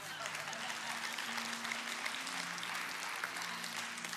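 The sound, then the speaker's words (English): An audience claps steadily for several seconds, a dense, even wash of many hands at constant loudness, with a faint low sustained tone running underneath. “Now is when you clap.”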